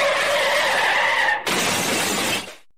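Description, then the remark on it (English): Tires squeal in a long, steady skid for over a second, then an abrupt, loud crash of shattering glass and crumpling metal bursts out and rattles on before cutting off. “That Cyrillic languages are based on the noise you make when you watch a gruesome car crash?”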